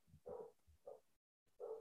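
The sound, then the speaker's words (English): A dog barks three times upstairs, each bark muffled and fairly faint, with short pauses between them and no talking. “Yeah, I hear him barking.”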